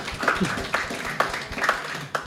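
A short burst of applause from a small group, a few hands clapping unevenly with sharper claps standing out every half second or so, fairly close and moderately loud.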